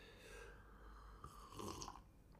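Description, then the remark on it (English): A quiet slurping sip of a drink lasting a couple of seconds, breathy and wet with a slight rise toward the end, with no talking over it. “All right, let's take another sip of this.”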